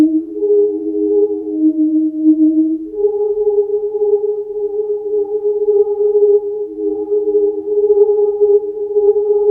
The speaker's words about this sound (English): And then I had this whirling tones. It was a spirit catcher that I had recorded. It was just a beautiful kind of gadget that whirled around and made this just beautiful kind of humming.